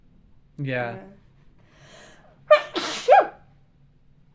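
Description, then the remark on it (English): A brief spoken word, then a sharp sneeze with a noisy inhale leading into the burst, followed by a quick second catch of breath. “Bless you.”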